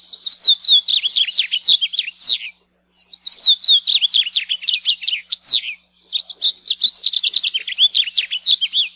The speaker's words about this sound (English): House finch song has been described as a sweet warble and can be heard throughout the year in Hawaii.